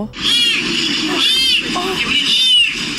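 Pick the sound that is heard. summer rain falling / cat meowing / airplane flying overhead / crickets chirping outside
cat meowing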